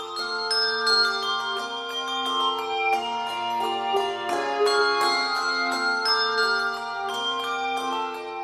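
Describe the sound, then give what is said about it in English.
A handbell choir, the Sonos Handbell Ensemble, rings a bright melody on a mix of Schulmerich and Malmark bells, many tuned bells struck in steady rhythm with overlapping, sustained tones that shimmer and decay, clear with no voices. “This is the Sonos Handbell Ensemble, one of the few choirs that mixes Schulmerich and Malmark bells.”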